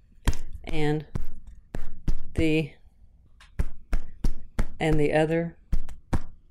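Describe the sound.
Typing on a keyboard, with sharp close-up key clacks landing in an uneven rhythm, interrupted by a few short bursts of murmured voice.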